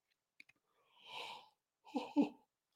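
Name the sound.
yawn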